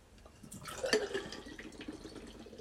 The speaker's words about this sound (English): So obviously you got to pour it into a glass. It's a hard pour, similar similar to other like dark ales. I don't know how big this glass is though, which could be interesting. Just do a hard pour and see how we go.